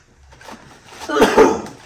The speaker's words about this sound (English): Is that a sneeze? No, it's a cough.